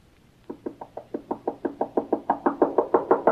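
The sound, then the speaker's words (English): Rapid, insistent knocking on a door, a steady run of about seventeen firm raps that grow louder and more forceful as they go, with no voices. “Open that door!”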